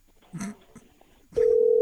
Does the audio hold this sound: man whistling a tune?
no